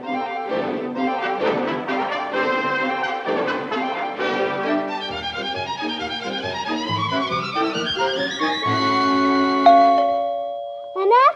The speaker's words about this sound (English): was that the doorbell? Yes, and nobody's down here but me. Oh, my goodness, I thought I heard it.